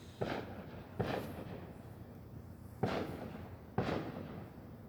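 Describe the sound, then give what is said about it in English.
Fireworks boom outside, set off on a day with no holiday, four muffled bursts at uneven intervals, each with a rumbling tail that lingers before the next one. No one speaks. “Yay, let's shoot off fireworks when there's no holiday.”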